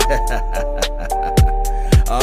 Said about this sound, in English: Yeah. Y'all hear the beep. Yeah.